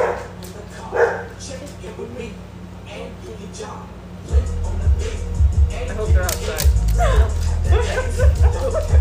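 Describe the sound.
A dog barks and yips in short bursts, with muffled voices and a heavy low rumble filling the background through the second half.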